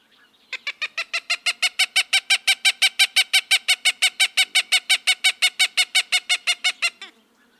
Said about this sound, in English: Cooper's hawk.